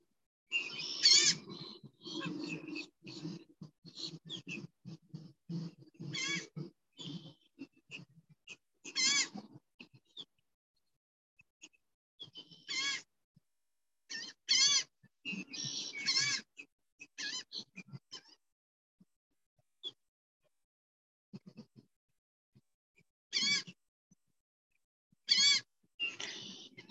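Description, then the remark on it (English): Birds call outdoors in scattered bursts, some harsh and bleating, separated by short quiet gaps, with more activity early on and occasional calls later. “Listen more to the birds, less to the mind.”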